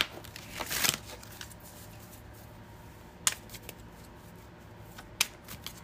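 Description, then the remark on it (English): Oracle cards from affirmation, moon, soul and unicorn decks being shuffled: a brief papery riffle near the start, then two crisp card taps spaced a couple of seconds apart, all fairly quiet with no talking. “When I shuffle, these ashes from the incense blow everywhere, so I'm just going to throw those away real quick.”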